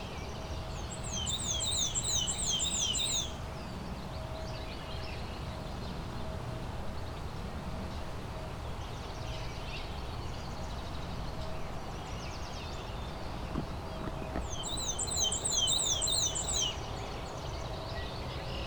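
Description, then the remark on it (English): Killdeer calls passing overhead, two bursts of rapid, shrill repeated notes a dozen seconds apart, over a steady outdoor background hiss with no voices. “There's some killdeers going over while I'm taking photos of the black and white warbler.”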